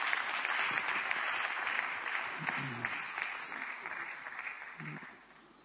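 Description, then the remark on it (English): Steady applause from an audience welcoming Sister Rebecca to join the table for the discussions, a dense wash of clapping that holds for several seconds before tapering off, with a few faint voices murmuring underneath. “And shall we also give a hand to welcome Sister Rebecca, his lovely wife.”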